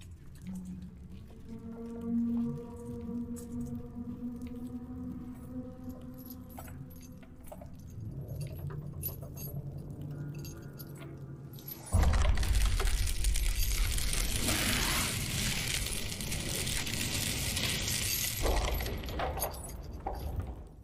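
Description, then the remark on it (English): In the Reaper's hideout, drawn-out creaking groans and rattling chains, then a sudden loud, rough burst as a wooden hatch swings open, followed by a sustained noisy rush. No one speaks. “And you hear a creaking, chains being kind of moved, and then what sounds like a hatch opening.”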